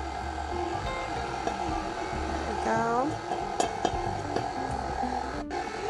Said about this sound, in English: And I'm gonna turn that on and mix it until it's well incorporated, about 1, 2, 3 minutes. While the mixer is still running, I'm going to pour in my milk, milk that I scalded a little bit ago.